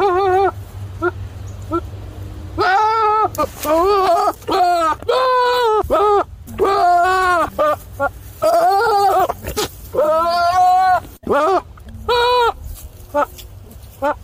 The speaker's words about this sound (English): let's take a listen to this goat that they think sounds like Jerry Seinfeld